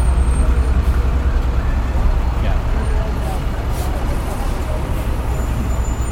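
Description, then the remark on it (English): A large city bus that has just pulled up at a stop idles with a deep, steady engine rumble and low road noise, filling the scene continuously. “I hope my smoke doesn't get into a bus that just pulled up here.”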